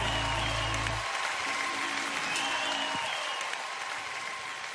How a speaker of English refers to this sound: All right, I love to start that out with those fake claps. So let's just clap along.